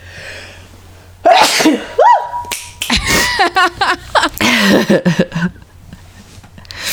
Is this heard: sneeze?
yes